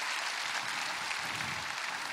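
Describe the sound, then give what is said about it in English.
The Milestone audience applauds for all those who have joined them, many hands clapping at once in a dense, steady wash of sound that holds at an even, moderate level throughout, with no voices heard over it. “Let's clap our hands for all those who have joined us.”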